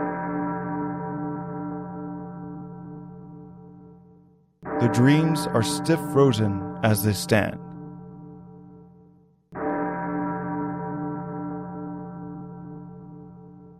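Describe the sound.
A large ebony clock strikes deep, resonant chimes that ring out and slowly fade; two strikes are heard, with a person speaking briefly in the quiet gap between them.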